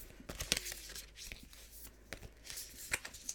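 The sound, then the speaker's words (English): A deck of oracle cards, the Work Your Light Oracle deck, being shuffled for a card reading: a quick series of soft, papery flicks and riffles at an uneven rhythm, quiet and with no one speaking. “I'm just gonna give it a bit of a shuffle.”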